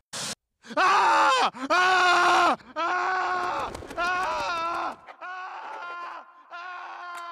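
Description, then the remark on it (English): The cartoon baby Stewie screams loudly when he sees them, in a string of long, drawn-out wails, each held for over a second with short breaks between, the later cries a bit quieter and more strained. “He sees them and he just starts screaming.”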